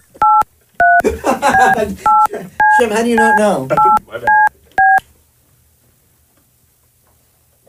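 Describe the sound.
A series of about eight short, bright telephone keypad tones punches out a number at an uneven pace, calling someone's dad on a phone put on speaker, with a person talking in between the beeps, clear.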